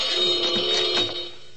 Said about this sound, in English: this super special burglar alarm is awfully sensitive. Dust spots in front of the photoelectric eye must have tripped the alarm.